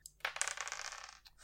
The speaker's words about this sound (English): Finally, I get to roll 2 dice. Yes. Finally.